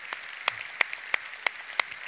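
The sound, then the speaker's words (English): A group claps hands for Jesus in a steady, even rhythm, about three sharp claps per second, moderately loud and clear with no voices over it. “Can we give Jesus a hand clap right now?”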